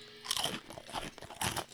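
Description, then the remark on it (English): Loud crunching of brittle fortune cookies bitten right against the microphone, with several sharp crackling bites in quick succession and no talking. “Let's crunch loudly into the microphone.”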